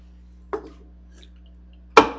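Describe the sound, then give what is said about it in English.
Two sharp clinks of glasses tapping together during a beverage break, about a second and a half apart, the second louder and ringing briefly, over a faint steady low hum with no talking. “First, a beverage break. Beverage break. Traditionally. Clink.”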